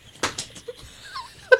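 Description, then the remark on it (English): A single sharp sneeze bursts out, a loud breathy blast with a quick second puff, followed by a few faint squeaky, whimpering vocal sounds and a short high yelp at the end. “It's been a whole week you've been holding that sneeze.”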